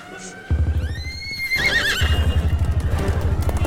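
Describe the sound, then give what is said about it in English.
A horse lets out a loud whinny that rises and wavers, while steady hoofbeats clop underneath throughout; no voices are heard. “You think the horse will be safe”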